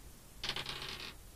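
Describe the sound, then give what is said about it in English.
Dice rolled for an intelligence check clatter across a hard tabletop in a quick run of about half a dozen bright, rattling clicks lasting under a second, then stop. No one speaks. “Roll an intelligence check.”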